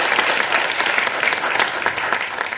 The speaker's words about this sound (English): And I'd like to ask you all to please join me in thanking Chris with a round of applause.